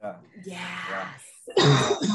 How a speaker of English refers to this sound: Sorry, guys. Smoking, and I have a cough from being sometimes sick.